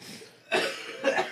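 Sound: cough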